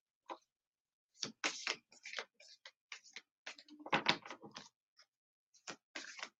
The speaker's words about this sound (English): Okay. We'll be shuffling forever. I'm just going to pull a card.